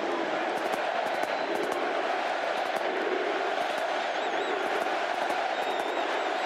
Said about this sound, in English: The Superdome erupted in cheers and chants of USA as Trump and Melania walked in.